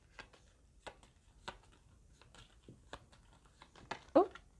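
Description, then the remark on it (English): A deck of reading cards is shuffled by hand during a card reading, producing a series of soft, irregular snaps and flicks with short pauses between them, ending in a slightly louder slap. “Okay, got a few cards that came out, so I'm just gonna have to do some additional shuffling a little bit.”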